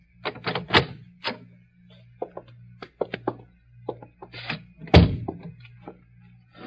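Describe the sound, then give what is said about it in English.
A hotel room door handle at the Prince Hotel rattles and clicks several times, followed by a heavier thunk as the door is pushed open, then a few softer knocks and scrapes. Fairly clear, with no talking. “You should try the door.”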